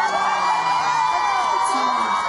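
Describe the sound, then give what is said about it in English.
A concert crowd cheers loudly and steadily, a dense wash of overlapping voices with high whoops and shouts rising above it, continuous for a couple of seconds. “Everybody's cheering.”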